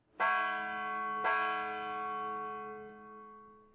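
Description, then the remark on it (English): A bell at the front door of an old, dilapidated theater rings twice, about a second apart, each strike loud and clear with rich, sustained tones that slowly fade. No voices. “Cuttlefish and Krill watch as McMurphy approaches the front door of the old dilapidated theater and rings the bell.”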